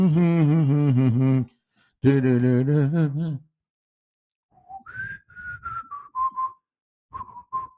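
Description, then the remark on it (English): A man hums two sustained, wavering phrases, then whistles a short tune of sliding notes with brief pauses. It is clear and fairly loud, with no talking. “he's in the cafe there, and there's only one other guy in the at the counter, several seats down, and that guy suddenly whistles to himself or hums to himself.”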